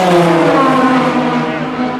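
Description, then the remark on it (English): Race cars passing on a track, their engines producing a loud, sustained, musical whine with layered harmonic tones that drop slightly in pitch and ease off a little toward the end. “I've always said that the sound of the cars at the mob is musical.”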